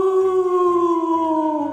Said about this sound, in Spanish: Oigo, además, gemidos lastimeros.